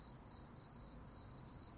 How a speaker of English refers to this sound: There was no response from the void of darkness that was outside. Only crickets.